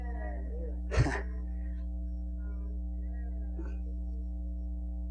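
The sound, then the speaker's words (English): A single quick sneeze bursts out near the start, fairly loud, then quiet returns over a steady low electrical hum, with only a faint small noise a few seconds later. “God bless you.”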